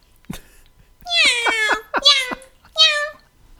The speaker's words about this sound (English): That sounds like you're playing a cat sample through, like, a keyboard. So you're like saying Casio, it's not like, as good as I think it is. It's an excellent digitized sounding cat. It's actually pretty impressive.